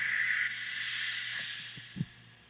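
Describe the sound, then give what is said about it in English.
A caller's fart comes through a phone line as a long, airy, hissing rush that slowly fades, ending in a few short low sputters. No one speaks. “He just farted into the phone.”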